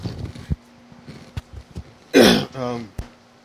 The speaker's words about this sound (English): Now put the mic back after you cough.